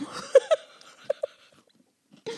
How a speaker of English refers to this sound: I'm sorry that I'm chewing in your ear. How rude of me.